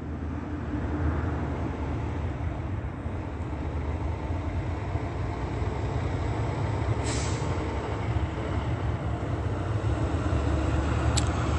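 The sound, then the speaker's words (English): A large white truck rumbles by with a steady, heavy low engine drone throughout, broken by brief sharp hisses of air brakes near the end. No one speaks. “this is the same truck engaged in surveillance as I documented days ago, the quick stop.”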